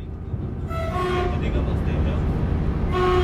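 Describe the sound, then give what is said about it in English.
A passenger train on the non-TGV line from Paris through Brive-la-Gaillarde and Limoges to Toulouse in central France rumbles steadily along the rails, loud, with two brief tonal hoots rising over the continuous low roar. “the first train I needed to take was the train to Brive-la-Gaillarde”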